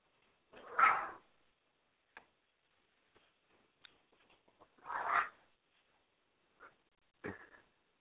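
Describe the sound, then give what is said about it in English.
Two excited chihuahuas let out two sharp barks a few seconds apart, with short yips, whimpers and faint scrabbling clicks scattered between them. No one speaks. “Oh, hyper dogs. Sorry about that.”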